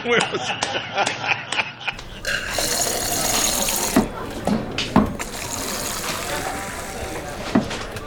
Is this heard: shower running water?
yes